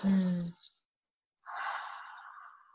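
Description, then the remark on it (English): A deep breath drawn in with a brief voiced sigh, a short pause, then a long, airy exhale that slowly fades, with no talking. “You have to take the breath and take it all the way up to the top of your head like you're filling a glass of water.”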